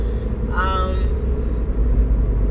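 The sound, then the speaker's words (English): A car rolling along in light road traffic, heard from inside as a steady, loud low road-and-engine rumble throughout, with a brief voice-like tone rising over it near the start. “But traffic is not bad right now.”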